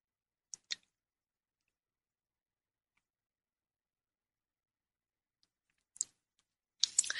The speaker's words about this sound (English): I'm going to take a sip of my tea here.